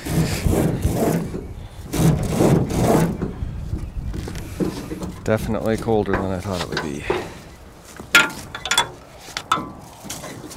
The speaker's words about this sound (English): With the wind blowing off Holmes Lake, it feels about 0 degrees as I record an aluminum boat and yellow canoe being dragged off a trailer.